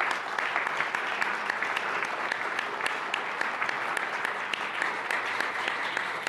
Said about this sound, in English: Okay, that concludes the panel discussion. Thank you all very much. A big round of applause for our three panelists.